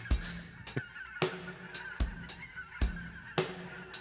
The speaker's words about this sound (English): Some seagulls overhead, perhaps.